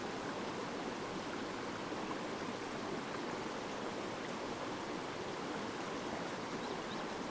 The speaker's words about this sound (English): Imagine corrupting this beautiful little river for whatever reason.